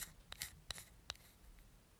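A combination lock being turned, giving a few sharp mechanical clicks at uneven intervals, quiet, with no voices.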